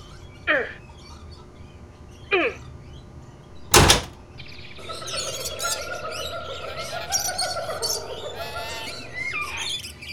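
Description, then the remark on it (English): A door blocked by ivy is shoved against repeatedly. It gives three creaking, rattling thumps that grow louder, the last a heavy bang, followed by a busy wash of chirping birds. “Why won't this door open?”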